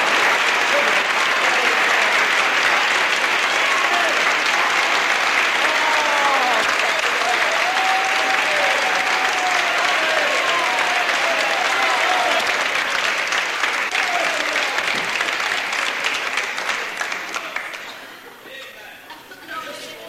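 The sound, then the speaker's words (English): An audience claps for Jesus, loudly and steadily for about seventeen seconds, a dense wash of many hands with scattered voices calling out beneath it, before the applause fades away. “If you believe Jesus is here, well, let's give Him a clap.”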